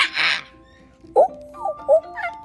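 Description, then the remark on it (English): A person mimics shrieking, screaming monkeys: a breathy burst, then a few short, high, rising squeals spaced apart, moderately loud, with no words spoken. “And what does a monkey sound like when it's shrieking and screaming?”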